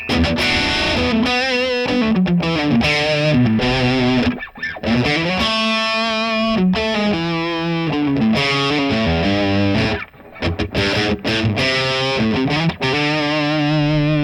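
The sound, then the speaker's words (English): Heavily distorted electric guitar played through a new amp plays a steady, loud riff of sustained chords and gliding notes, thick and saturated, pausing briefly only a couple of times. No one talks over it. “Probably like the vintage channel the best.”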